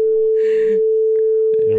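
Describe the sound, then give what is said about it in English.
A long, steady censor beep, a single mid-pitched tone holding unbroken for nearly two seconds, with muffled bits of voices breaking through underneath it. “About to be just a whole long beep on your head.”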